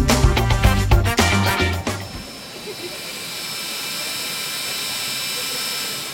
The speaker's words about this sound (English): No, ladies and gentlemen, that actually wasn't a vacuum cleaner. That is probably the largest 3D printer I've ever seen